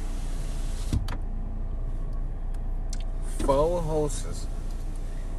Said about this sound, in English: Now this fucking car doesn't help. Yeah. Our fucking studio. Fucking studio.